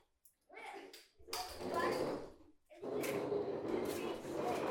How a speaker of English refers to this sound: Stop moving the chair.